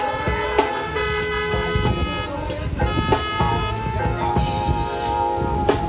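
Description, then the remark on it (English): At an 8th Street Baptist Church service, many car horns honk at once as applause for the praise and worship team, in a dense, overlapping chorus, sustained blasts and short toots mixing continuously and loudly for several seconds. “Come on, all your cars, go ahead and hit that centerpiece.”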